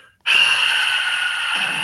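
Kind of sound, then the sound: vocal imitation, imitated heavy breathing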